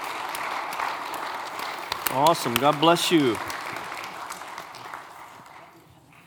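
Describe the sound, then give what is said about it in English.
An audience at a church service applauds a family in a steady, dense wash of clapping. A man speaks briefly over it midway, and the applause gradually dies away toward the end. “Let's give this family a big hand.”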